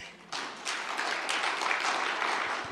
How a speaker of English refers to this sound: Hallelujah. Let's give God a big clap.